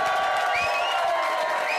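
A large crowd at a Blues celebration applauds and cheers for the team's number one fan in a steady, dense roar, with high rising whoops and whistles cutting through the clapping throughout.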